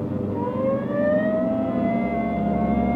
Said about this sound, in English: Hit the siren. I'll get the light.